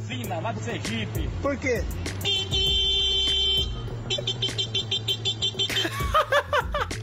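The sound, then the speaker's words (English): A man vocally mimics a car horn: a sustained, buzzy honk followed by a quick run of short beeps, fairly loud, with voiced chatter and chuckling around it. “The noise you're going to hear sounds like a man being interrupted by a car. He isn't being interrupted by the car. He is making the car sound.”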